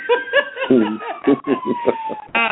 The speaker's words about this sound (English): Y'all hear all the fire trucks in the background, don't the alarm. It's not the studio.